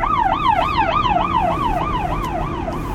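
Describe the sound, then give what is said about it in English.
A fire truck siren yelps in quick, steady up-and-down sweeps, loud, over a low rumbling engine and road noise, with no one talking. “whoa, God, okay, it's another fire truck, I gotta just, pull up here.”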